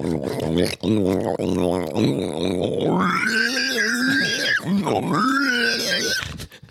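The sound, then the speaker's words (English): A human voice imitates a pig, first with rapid, throaty oinking grunts, then rising into drawn-out, nasal squeals. It's loud and continuous, with no other sounds around it. “I swear to God, it sounded like a fucking pig oinking.”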